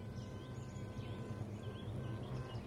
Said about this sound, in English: I was later told what it was, and it was the sound of a queen bee piping. A queen bee might live a few years, 3 or 4 years, and only makes this sound on the day that that she emerges, and might make that piping noise for an hour or so.